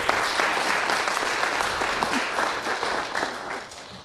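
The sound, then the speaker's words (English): Steady audience applause for a question from the audience fills the whole stretch, a dense, loud wash of many hands clapping at once with no single beat standing out, holding its level throughout before easing slightly at the end. “Let's clap it up.”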